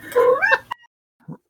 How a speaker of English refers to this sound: she just meowed. I don't know if you heard her.